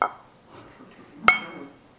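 A single muffled strike on a bell that is held tight, giving a short dull clink with only a brief ring before it dies away, otherwise quiet.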